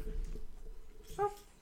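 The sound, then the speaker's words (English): A large 100-pound dog sitting in a recording studio lets out a single short, high-pitched whimper, fairly soft, against a quiet background. “For newer listeners, I have a 100-pound dog and he didn't want to leave the studio, so he's just sitting here with us.”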